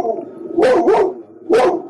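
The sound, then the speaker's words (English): A person imitates a dog, letting out three loud barks: two in quick succession, then a short pause before a final one. No other talking is heard. “he's a dog.”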